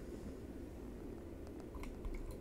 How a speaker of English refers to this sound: And now in the end, I'm just adding a little bit more water.